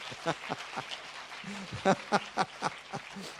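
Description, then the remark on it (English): An audience claps in a loose, steady rhythm, the sharp hand claps fairly quiet, with voices murmuring underneath. “And if you're going to clap, make it a mighty clap, because weak claps are good enough.”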